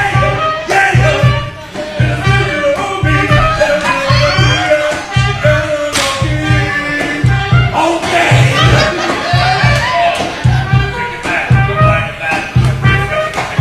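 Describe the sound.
A mariachi band going from table to table in a restaurant sings a requested R&B pop song, voices carried over steady, pulsing strummed guitars and bass, with lively restaurant crowd noise underneath throughout.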